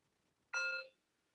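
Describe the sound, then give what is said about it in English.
A single meditation bell is struck once, giving a bright, sudden tone with shimmering overtones that fades away in under half a second. No one speaks. “And we accept that the bell rang.”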